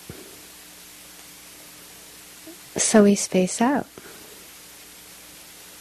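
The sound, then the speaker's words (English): Rain falls steadily, a soft, even hiss that continues without change throughout, while a voice speaks briefly over it in the middle. “It's like with the sound of the rain right now.”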